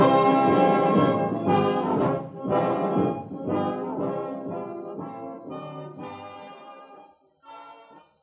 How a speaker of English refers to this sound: Three chimes mean good times on NBC.